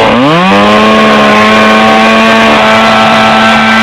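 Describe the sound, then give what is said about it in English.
A chainsaw engine catches in the woods and quickly revs up to a loud, steady, buzzing whine that holds for several seconds, with no one talking. “A chainsaw. A chainsaw.”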